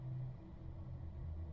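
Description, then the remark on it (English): A car engine idles and the car rolls slowly out of a driveway after its door is shut, a steady low rumble with a faint hum, fairly quiet, with no voices. “You too, Glenn said as his childhood best friend shut the car door and started rolling out of the driveway.”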